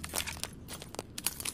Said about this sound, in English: Bambi steps over broken glass to get into the spittoon.